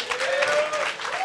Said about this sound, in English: Yo, well, hold up. Round of applause for …, man.